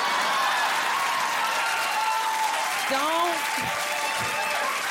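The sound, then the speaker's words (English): An audience, including short men, claps steadily, a dense, even wash of applause that fills the whole stretch, with a brief vocal cry rising through it near the end. “See all them short men clapping?”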